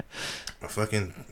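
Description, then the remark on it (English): A person coughs: a harsh, breathy rush of air followed by two short, throaty voiced bursts in quick succession, fairly loud and with no other talk. “Because man, I had to cough.”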